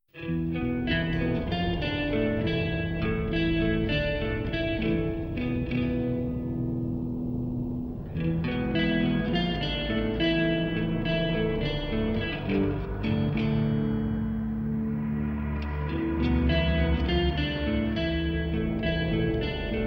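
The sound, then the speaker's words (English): Undersea, submarine-like sound effects fill a song intro: loud, murky droning tones with echo and distortion, pulsing steadily and pausing briefly partway before swelling again. No one speaks. “It has some like sound effects and stuff, and it really sets the mood of like being undersea in a submarine.”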